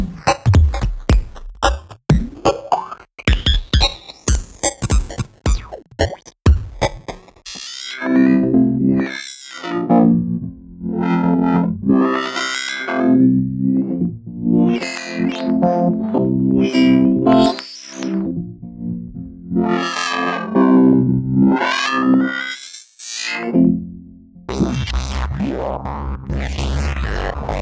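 Gritty, bitcrushed synth sound, a Bitcrusher-processed signal being filtered: first a run of quick staccato notes, then a sustained buzzing chord whose filter sweeps up and down repeatedly, loud, with no voices.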